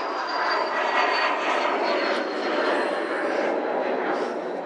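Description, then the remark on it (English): A loud, steady roar of an airplane passing overhead, unseen in thick fog, a broad continuous rumble with a faint high whine that stays strong throughout, with no clear speech over it. “I can't even see the freaking plane.”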